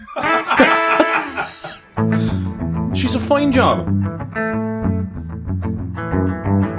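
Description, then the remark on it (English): Electric guitar played through a Boss Katana amplifier with reverb, ringing sustained notes and chords with a loud, full tone, following a brief spoken remark at the start. “You're listening to the Boss Katana from Boss.”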